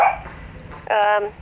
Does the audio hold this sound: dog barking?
yes